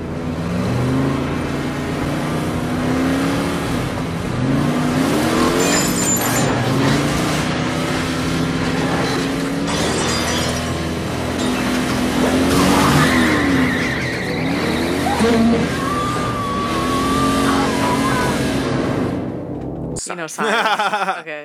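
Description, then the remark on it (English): A car engine roars and revs loudly, rising and falling in pitch, while tires squeal and skid in sharp bursts. The sound is dense for about twenty seconds before cutting off abruptly. “Forces her way through, destroying herself in the process to cut this guy in half.”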